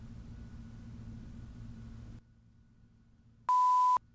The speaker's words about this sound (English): If you get close to it, it'll start beeping.